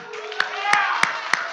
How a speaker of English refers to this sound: Come on, let's give God a clap offering.